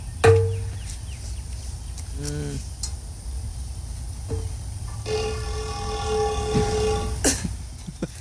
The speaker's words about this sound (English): All right, we'll just go with the fart in this vase to see if it sounds like when I farted in the pot. Oh, wow. That sounds cool.